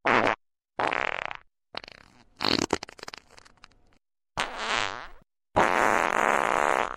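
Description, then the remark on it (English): A series of wet, squelchy armpit farts made by hand, five or six loud bursts of varying length with brief silences between, with no talking. “Oh, I was doing arm farts.”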